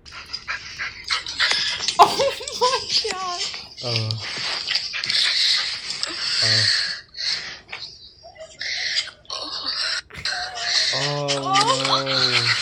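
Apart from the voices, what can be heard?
dog whining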